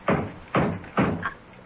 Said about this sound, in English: It sounds like someone at the door. At the front door. One minute.